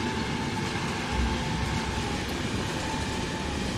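A train rumbles along steadily, with a dense, continuous roar of rail noise and a faint metallic hum, holding at an even level throughout, with no voices.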